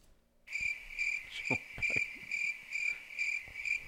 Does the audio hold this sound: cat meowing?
no